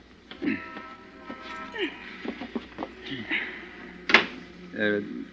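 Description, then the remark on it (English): A single solid thump of a car door shutting, cutting sharply through voices talking in the background. “I don't think your door's closed tight, honey.”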